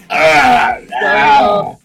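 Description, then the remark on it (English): A person yawns loudly twice while stretching, each drawn-out, groaning breath lasting under a second with a short pause between them, clear with no other sounds. “It's my turn to stretch. Oh my gosh. Stop yawning.”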